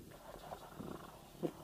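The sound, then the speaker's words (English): A person softly imitates a cat's purr with a few low, rumbling bursts, quiet, ending in a slightly stronger rasp. “Nobody can make a purring sound loud enough for the microphone.”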